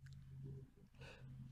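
A single short, breathy sneeze bursts out about two-thirds of the way through, over a low steady hum and faint background rustling.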